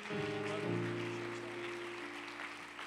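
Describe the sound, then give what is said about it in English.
A church audience claps steadily and continuously to welcome a guest preacher, a dense wash of hand claps layered over sustained low organ or keyboard chords that shift once midway. “Why don't we continue to clap our hands to the Lord and just magnify him together?”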